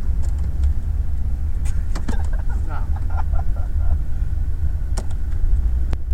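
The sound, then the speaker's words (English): A steady, low engine rumble from inside a car sitting still in traffic on the Beltline, not moving, with faint muffled voices and a few soft clicks over the constant hum. “We're sitting in traffic on the Beltline. Not moving.”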